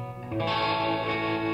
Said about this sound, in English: It's got delay. It's got lots of reverb on it. So it sounds sort of mysterious, almost like a sort of crime drama. Yeah. That sort of noir type feel.